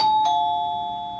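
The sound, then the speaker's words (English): A doorbell chimes with two quick ding-dong notes, then its bright ringing tone lingers and slowly fades, as two people sit at the breakfast table at home. The sound is clear, with no voices. “As the two sat at the table, the bell rang.”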